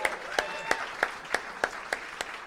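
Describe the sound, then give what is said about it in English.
Applause for a singer at the Giant Dwarf venue in a steady rhythm, about eight sharp claps evenly spaced over a couple of seconds, moderately quiet with a faint wash between them and no voices. “give it up one more time.”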